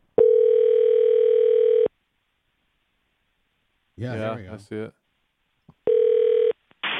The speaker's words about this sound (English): I'm calling us. See if our lines are ringing.